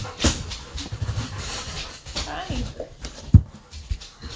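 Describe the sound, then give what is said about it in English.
Dogs in a house whimper and whine restlessly, with a few sharp yips and breathy panting mixed in, while muffled voices talk in the background. “Oh, okay, so you guys are going to hear the dogs in our house because they're being butt heads outside.”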